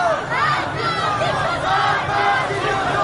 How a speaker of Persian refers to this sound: خیابان آزادی کاملا زیر پای معترضان است. جلوی پایگاه بسیج که مقر فرماندهی بسیج تهران است، شعارهای پراکنده مردم سکوت را می شکند. حالا دیگر مردم با دیدن بسیجیان مسلح روی پشت بام پایگاه بسیج خشمگین می شوند و شعارها تندتر و تندتر می شوند.